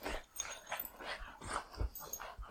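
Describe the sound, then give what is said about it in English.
Pet dogs wrestling right beside the person recording, with repeated rough growls, snarls and little yips in quick, uneven bursts, playful scuffling noises running throughout without any talking. “So oh my God, my dogs are wrestling right next to me, guys.”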